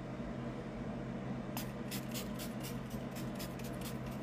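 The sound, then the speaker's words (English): Time Locker setting spray misted onto a face in a rapid series of about nine or ten short hissing spritzes, starting partway in over a steady low room hum, with no one talking. “But I am going to set my face because I think it's cute. I'm just going to use this Time Locker spray.”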